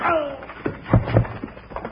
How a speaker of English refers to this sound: Ooh-wee, Bill. That punch would have jarred his granddaddy and Timbuktu.